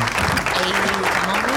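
A burst of steady clapping from a small group fills the moment, dense, with a voice murmuring faintly underneath.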